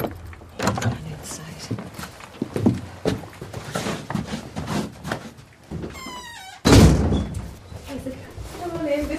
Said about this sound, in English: You're unlocking the wooden door for us. I am indeed, yes.